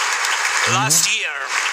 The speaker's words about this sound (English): And you get cheering from that. They're pounding them, but they still stand. That's what you get the cheering for.